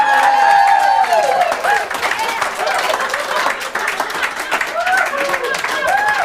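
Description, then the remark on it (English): An audience applauds loudly and steadily for several seconds, a dense wash of clapping that never lets up, with a few rising and falling whoops and cheers riding over it. “You all applaud that, but envy is ignorance.”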